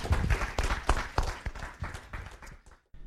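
A round of applause: a steady patter of many hands clapping, loud and dense at first, then thinning out and stopping near the end, with no voices over it.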